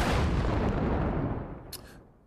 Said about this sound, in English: Want to give a big shout out, salute to all those that have been supporting, tuning in, giving all that feedback, man. Gunshot for y'all.